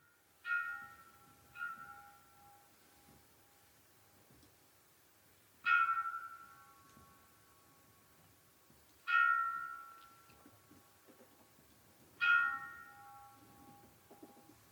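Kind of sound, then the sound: signal or alarm, mindfulness bell ringing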